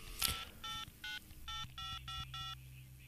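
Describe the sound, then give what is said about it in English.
A telephone being dialed to call a storm spotter out in the field: a short click, then six quick touch-tone beeps in a steady run, each a clear, bright electronic tone over a faint hum, with no one speaking. “Well, let me give him a call here and I'll just find out here.”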